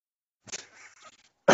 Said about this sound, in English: He'd clear his throat. Much like he is going to do right now.